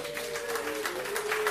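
audience clapping

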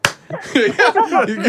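hand clap

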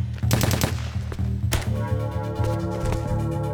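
gunfire

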